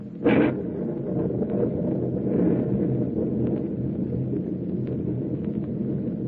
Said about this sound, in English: This storm is rising in intensity every minute.